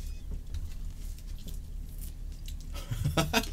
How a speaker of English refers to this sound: I'm still chewing on it.